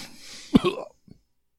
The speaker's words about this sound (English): Just a polite hiccup.